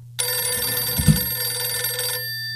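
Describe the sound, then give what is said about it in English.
A loud telephone bell rings continuously for about two seconds with a bright metallic jangle, then stops abruptly, leaving a faint low hum underneath. “A phone that rings like that, it's never good on the other end.”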